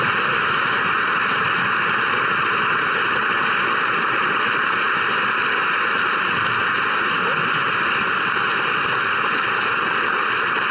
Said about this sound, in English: Standing ovation, folks. Every member of Parliament is standing like trained seals, clapping, applauding for this man because they don't know anything.